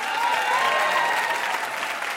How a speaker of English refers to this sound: That was a tight game and a hard one. Huge round of applause for these two contestants.